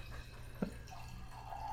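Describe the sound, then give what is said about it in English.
Beer being poured into a glass: a soft splash, then a faint, steady trickle whose pitch slowly rises as the glass fills, over a low background hum. “Give me your glass while we're talking about this.”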